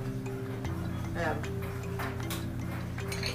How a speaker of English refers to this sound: But right now, I'm loading the dishwasher.